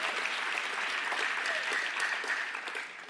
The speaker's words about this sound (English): Give that a round of applause. Let's loosen it up a little bit.